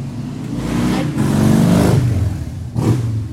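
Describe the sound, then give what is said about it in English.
A motorcycle engine revs loudly outdoors, its droning pitch climbing and falling in a couple of surges, then a brief dip before one more quick rev. No talking. “I love the people that have to rev their motors just because they're revving motors.”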